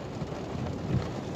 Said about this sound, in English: It's raining right now. I'm in Raleigh, North Carolina right now. It's raining and hailing.